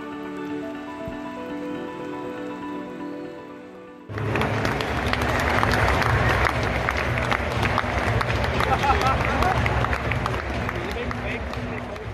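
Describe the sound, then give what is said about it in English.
A steady humming tone holds for about four seconds, then a sudden wash of scattered crowd applause breaks in at half-time of a Wigan versus Portsmouth football match at the DW Stadium, crackly and fairly loud, carrying on until the end. “There's a smattering of applause, the odd chuckle, and the stadium announcer explaining that there's been a slight mix-up.”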